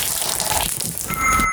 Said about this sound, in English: Can I just tip the basin over? Yep. Basin of water.